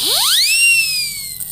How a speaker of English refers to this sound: You get the whistle blown at you.